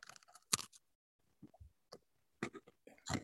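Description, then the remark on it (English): Crunching on a split pretzel: a run of sharp, brittle cracks and crackly bursts in irregular bites, with short quiet gaps between them and no talking. “Good crunch happening there.”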